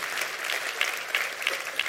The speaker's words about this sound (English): Yeah, thank you for clapping for my resolutions.